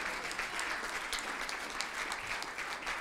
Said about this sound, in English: Now let's give the Lord a big hand clap of praise this morning.